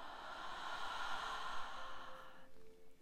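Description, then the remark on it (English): A slow, deep breath is drawn in and then released during a guided breathing exercise, a soft airy rush lasting a couple of seconds before fading into quiet. Fairly gentle, with no one talking. “1 more. Inhale. And exhale.”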